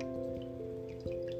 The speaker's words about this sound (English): Let me see that bottle of water. Mm-hmm. Okay, so I have to show her this. I'm going to take a bottle and pour into a cup right now.